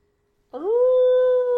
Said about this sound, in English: This actually is exactly what Big Bear sounds like at night. Because of all the people with their damn dogs.